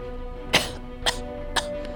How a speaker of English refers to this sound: He coughed again.